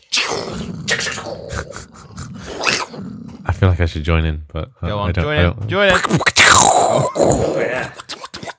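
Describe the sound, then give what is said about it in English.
After brief talk, voices imitate lightning and thunder: low, rumbling growls followed by loud, hissing crackle-like bursts, layered and overlapping for a few seconds. “That was some good lightning sounds.”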